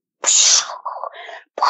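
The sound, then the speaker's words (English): A person imitates an explosion with their voice: a loud, hissing burst that trails into a lower, sputtering rumble, then another sharp burst starts just as the sound cuts off. “That was my blow up noise.”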